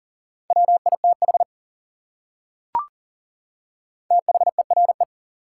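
Rapid Morse code CW beeps at 40 words per minute in a steady mid-pitched tone, sent in two quick bursts of dits and dahs separated by a silent pause with a single sharp click between them.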